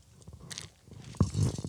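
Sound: taking a drink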